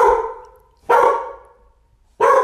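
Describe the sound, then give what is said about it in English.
A dog named Charlie suddenly barks loudly in sharp, abrupt bursts, each bark ringing out briefly before fading, with pauses between them and no talking. “Out of nowhere, starts barking.”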